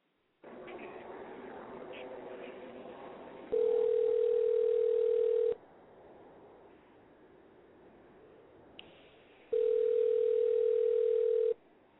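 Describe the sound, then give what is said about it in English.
A telephone call being placed over a phone line: brief dial-line noise, then two loud, steady two-second ringing tones separated by a few seconds of quiet line hiss. “Let's go ahead and hit her on the hip.”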